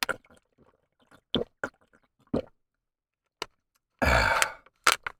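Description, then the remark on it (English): Quiet swallowing and small wet mouth sounds from someone drinking water, a few soft clicks spaced apart, then a loud, rough burp bursts out near the end, followed by a couple of short sounds. “Excuse me just a second, gotta drink some water.”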